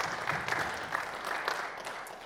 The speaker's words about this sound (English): How many of you would agree? Yes, go ahead. You can clap. That's all right.